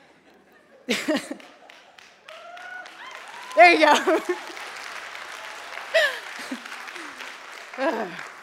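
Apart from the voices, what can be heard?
audience clapping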